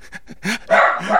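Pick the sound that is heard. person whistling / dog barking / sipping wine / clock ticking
dog barking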